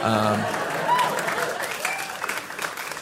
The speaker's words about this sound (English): I think I was 20 maybe when I wrote for All That on Nickelodeon. I'll hold for applause.